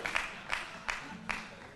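An audience claps together in broad, sustained applause as a hand clap of praise, with a few louder claps standing out at a steady rhythm over the dense wash of hands. No one speaks.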